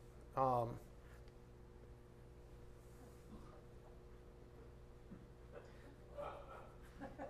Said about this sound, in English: This is Peeny, my mother's dog, short for Peanut. He's this big. He's supposed to be like this big, but he's this big.